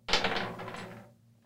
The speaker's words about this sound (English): Give it a roll. Yeah, roll them both. Both dice. 10.